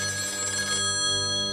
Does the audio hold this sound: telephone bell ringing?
yes